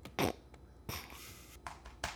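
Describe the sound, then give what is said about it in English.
A series of harsh, raspy coughs after inhaling smoke comes in irregular bursts, one dragging into a long wheezy rasp, fairly loud, with no talking. “My lungs do not have the capacity for this shit.”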